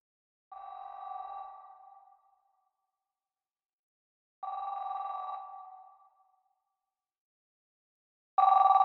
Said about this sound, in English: I know when we got the call. 12:58 a.m. I heard the house phone ring, and then his cell phone in the bedroom rang, you know, and he got it,